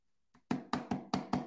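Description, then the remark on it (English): Five quick knocks on a hardcover book cover, fairly loud, in a steady rhythm after a soft first tap, each a dull, solid rap with no one talking. “When you knock on it, it makes that sound.”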